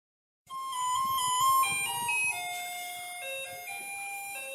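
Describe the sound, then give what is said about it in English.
A bright, electronic chime-like jingle, a theme tune remixing the Taiwan garbage truck song, plays a simple stepping melody, steady and fairly loud throughout with no voices. “For those in Taiwan, you'd recognize that as a remix of the Garbage Truck song.”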